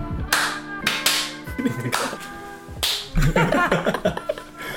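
Several sharp, crisp hand claps strike at uneven intervals, each a bright smack that fades quickly, over a steady layer of sustained tonal sound with busier, choppier texture toward the end.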